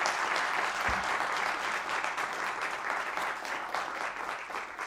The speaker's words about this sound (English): So thank you very much. Big round of applause.